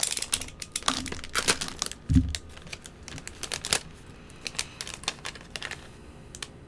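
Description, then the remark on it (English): Irregular crinkling and crackling of a thin plastic LEGO blind bag being cut open with a knife and handled, in quick bursts with one duller thump partway through; no one speaks. “LEGO Blind Bag Opening”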